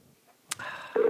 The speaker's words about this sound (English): Third ring coming up. He usually answers on the third ring.